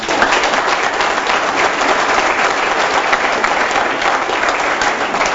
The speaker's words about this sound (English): And for that, I would like to applaud Advocate Vusi Pikoli.